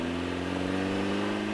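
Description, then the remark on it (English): A car engine hums steadily with a low, droning rumble as a car pulls up and idles at a drilling rig at night. No voices are heard. “I was toasting some pork chops over the porch for myself when I heard a car pulling up.”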